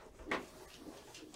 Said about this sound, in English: There we go. It's going in this drawer. The drawer of mystery.